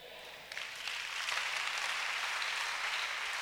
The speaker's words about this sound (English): Oh, keep clapping for the Lord. What a testimony.